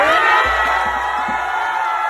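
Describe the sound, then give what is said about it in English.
A large crowd at an outdoor public rally celebrating Kamala Harris and Joe Biden's election cheers and whoops loudly, a continuous wash of voices with scattered shouts rising above it and a few low thumps underneath. “There she is out with a giant crowd for Kamala Harris and Joe Biden.”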